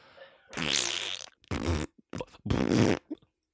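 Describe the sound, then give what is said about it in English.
Three loud, buzzy fart noises in quick succession, the first long and drawn out, the others shorter and sputtering, with no talking. “Farting Italian man.”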